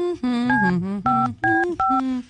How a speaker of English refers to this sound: Hey, I got a phone in the line open. Okay. I'm going to punch in the number you gave me and see if they answer.